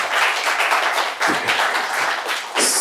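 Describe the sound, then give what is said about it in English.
A short burst of audience applause for Toronto-based author Zalika Reid-Benta's debut short story collection Frying Plantain, many hands clapping together in a dense, steady patter that fills the whole moment without any voices over it. “Can we get a quick round of applause for that?”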